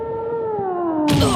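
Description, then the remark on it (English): A cat gives one long, drawn-out meow with a slowly falling pitch, fairly loud, ending in a harsher, noisier burst. “Cat, over here.”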